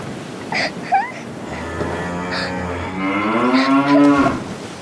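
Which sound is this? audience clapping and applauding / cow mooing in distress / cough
cow mooing in distress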